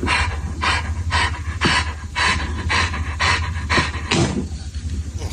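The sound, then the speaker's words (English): A dog pants rapidly and steadily in a played video of dogs having their backs cracked, with breathy huffs repeating roughly twice a second over a low background hum. No one speaks. “How do you know the dog needs his back cracked?”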